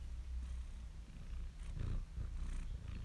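A male cat purrs softly, a low steady rumble pulsing in a slow rhythm with each breath, quiet and continuous with no voices over it.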